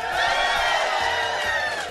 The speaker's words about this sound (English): Oh, can we just to prove that it's live, can we get a big cheer from the crowd? Go!